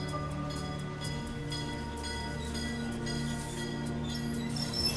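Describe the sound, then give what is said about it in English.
A train carrying Elmer Nofsinger's bloodhounds from Beatrice, Nebraska, to Villisca in 1912 rolls steadily along the rails with a low, continuous rumble and a repeating clatter from the wheels, the sound staying even throughout, with no voices. “Nofsinger sent his bloodhounds to Villisca by train.”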